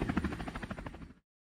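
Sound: helicopter flying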